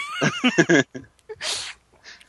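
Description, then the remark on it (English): A person voices a quick, wavering horse whinny, a few choppy neighing bursts followed by a breathy snort-like blow, fairly loud. “Like, it made it seem like Decker went to go get his horse.”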